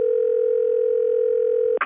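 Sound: phone call dial tone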